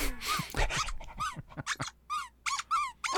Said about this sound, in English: So this is what we play. Yeah, that's for our little four-legged friends. Is that a recording of your dogs? No, just it's just out there, you know, just something. Well, for the dogs.